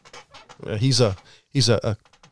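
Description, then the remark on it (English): A human voice imitates a mallard duck's quack with two loud, nasal honks, the first drawn out and the second shorter, separated by a brief pause. “He's a mallard. Quack.”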